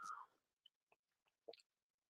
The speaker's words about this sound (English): It's one of those occasions where, excuse me, I'm just going to take a sip of tea.